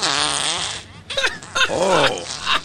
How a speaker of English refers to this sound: They said, Alexa, do a Christmas fart. Santa, give them a Christmas fart. Listen to this frosty Christmas fart.